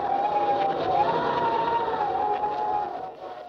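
A steady, loud howling wind with a wavering mid-pitched whistle that rises and falls over a rushing noise bed, fading slightly at the end. No one speaks.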